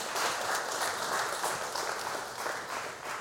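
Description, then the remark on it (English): An audience claps steadily for the people who came up front, a dense, continuous wash of applause that stays loud and even throughout without any voices breaking through. “But before we do that, why don't we give a warm round of applause here for our folks up here.”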